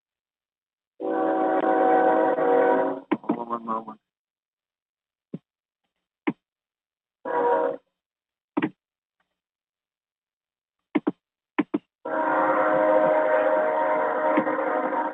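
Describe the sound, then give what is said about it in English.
A passing train's horn blasts loudly in long, harmonic bursts, cutting out, then returning in a short honk and a final sustained blare, with sharp clacks in between and a voice briefly speaking. “A happy Saturday, also the train passing by.”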